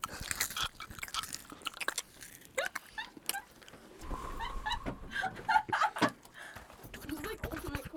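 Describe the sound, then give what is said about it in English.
Loud crunching of a crisp Annie's snack being bitten and chewed close to the microphone, with sharp irregular crackles and a few soft voices murmuring in the background. “get the crunch.”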